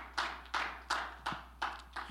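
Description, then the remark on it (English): An audience claps hands together in unison to the Lord, six sharp claps on a steady, even beat, moderately loud, with no voices over them. “Let's clap our hands to the Lord.”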